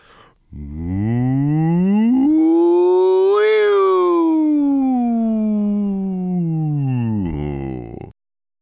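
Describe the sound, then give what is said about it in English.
A single voice sings a smooth vocal siren as a warm-up, gliding steadily up from a low pitch to a high peak and then sliding back down, held on one unbroken breath with no words. “Vocal sirens help us warm up by taking us from our lowest sound all the way up to our highest sound in one nice slide.”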